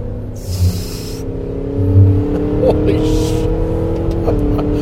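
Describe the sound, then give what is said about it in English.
The engine of a 700-horsepower truck on all-season tires in the middle of winter roars, its deep, steady drone climbing gradually in pitch as it accelerates, loud and continuous throughout. “Meanwhile, I'm going to take these guys down because, of course, I can.”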